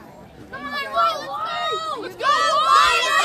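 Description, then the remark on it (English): A large football stadium crowd at a game involving the Wolves roars, many overlapping voices forming a steady din that swells into louder, higher cheering partway through and stays up until the end. “There's quite a big crowd here.”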